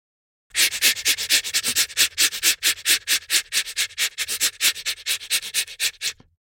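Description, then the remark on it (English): Brisk scrubbing of a manual toothbrush against teeth, a steady run of quick rhythmic bristle strokes lasting about six seconds, with no talking. “Toothbrush manual.”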